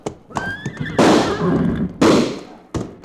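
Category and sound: animal, horse whinnying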